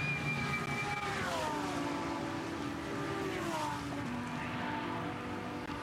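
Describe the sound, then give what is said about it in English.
Several Mercedes-AMG GT race cars roar side by side through the BMW M Elbow corner on a wet track, throwing up water like a boat's wake, engines rising and falling in pitch as they shift and hiss through spray, loud and continuous with no one talking. “And those Mercedes AMGs as they negotiate the BMW M Elbow.”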